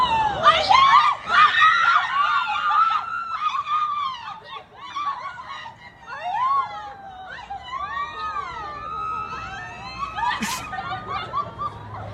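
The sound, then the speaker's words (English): Excited high-pitched screaming erupts loudly at first as friends react to a pregnancy announcement while posing for a group picture, then continues in overlapping squeals and shrieks, with laughter and excited voices mixed in, fading somewhat toward the end. “Sorry that you had to listen to me screaming.”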